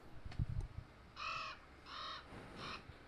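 An American crow gives three harsh, evenly spaced caws, each about a third of a second long, clear, with a brief low thump of background noise before the calls.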